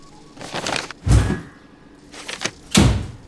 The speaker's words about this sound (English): There. Now we've got the windows and the door blocked.